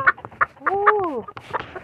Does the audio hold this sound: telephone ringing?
no